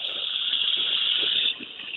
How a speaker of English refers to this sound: She's doing dishes. Okay. She's got the phone. Okay. Yeah. She's on speakerphone and she's doing the dishes